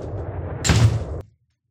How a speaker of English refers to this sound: Let me shut this door.